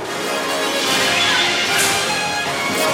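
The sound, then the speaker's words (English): Loud, crashing cymbals wash over a dense music track, a bright, hissing shimmer that sustains steadily, with a sharper burst of crash partway through and no voices. “The crashing, the cymbals crashing and all that.”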